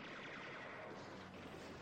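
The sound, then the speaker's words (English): Dense, sustained gunfire in a David Hasselhoff movie scene where a band and their van are being shot up, a continuous loud barrage of rapid shots blurring together with no pauses and no voices. “Guns banging. Look at that. Their band is being shot up.”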